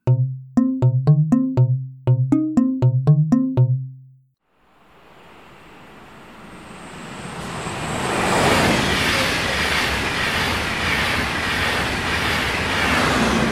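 A short run of pitched tones gives way to a train approaching on rails, its broad rumbling roar swelling over several seconds and then holding loud as it passes.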